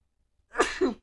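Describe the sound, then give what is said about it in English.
A single sharp sneeze bursts out abruptly with a breathy, two-part shape, then cuts off into silence. “Bless you.”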